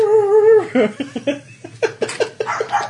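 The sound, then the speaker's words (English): A small dog, a chihuahua, lets out a drawn-out high whine, then breaks into a quick, uneven string of sharp yips and barks, fairly loud. “That's what chihuahuas do.”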